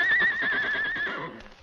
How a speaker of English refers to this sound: And then he heard a sound. Whinny of his great horse, Silver, and realized that he was not entirely by himself.